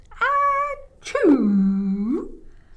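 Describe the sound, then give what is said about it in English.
A voice imitates a horse sneezing: a drawn-out, rising 'ah' followed by a sharp burst that slides into a long, falling 'choo,' loud with no other sounds around it. “But the horse sneezed.”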